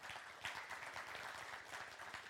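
An audience claps their hands together in a dense, sustained burst of applause, many overlapping claps at an even level throughout, with no voices standing out.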